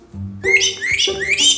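A pet parrot whistles two bright, rising phrases in quick succession, fairly loud, each a warbling upward sweep with a low steady hum underneath and no talking.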